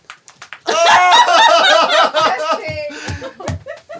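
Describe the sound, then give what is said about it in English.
Several quick, fleshy slaps against a thigh, a few at the start and a few more near the end, with loud laughter and chatter filling the middle. “I wasn't hitting the mic with it. It was hitting my thigh.”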